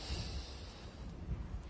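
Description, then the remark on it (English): Quiet, rough snoring of a husband asleep beside his wife: low, rattling nasal breaths over a steady breathy hiss, with no talking. “Snores and withholding.”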